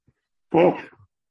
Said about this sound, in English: hang on, I'm going to sneeze now.